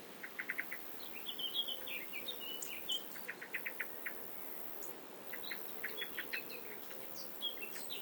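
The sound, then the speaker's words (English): Grasshoppers, including common green, field and meadow grasshoppers, chirp in short, dry pulsing bursts that repeat across an open meadow, with faint birdsong twittering in the background and no voices. “John Clare, the peasant poet, describe their fretting song”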